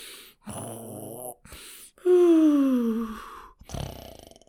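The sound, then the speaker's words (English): An emperor snores in his room in a palace in a few drawn-out breaths, one loud exhale sliding downward in a whistling groan, ending in a short rattling snort. No talking. “The whole room is silent, save for the snoring sounds of the emperor.”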